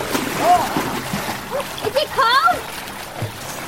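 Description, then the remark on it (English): Water splashes and sloshes in a cold waterfall pool surrounded by lush greenery, over a steady rushing background, with children's high-pitched squeals and voices breaking in as they swim and play in the pool. “When you're splashing around, it scares the eels away.”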